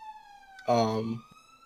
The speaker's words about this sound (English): The sirens are on my side, just so everyone's aware.